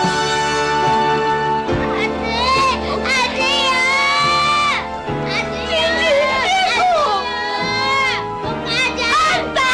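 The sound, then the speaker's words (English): Child voice actors in a film yell and scream over one another, loud, with high-pitched shrieks rising and falling continuously, plus a steady low hum underneath. “Like they got voice actors that were of that age, and like they hear them like yelling and screaming.”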